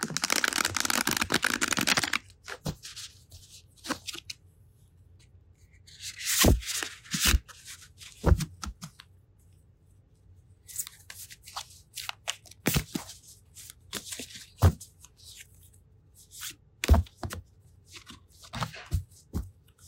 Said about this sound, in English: Okay, stand by. I'm gonna shuffle.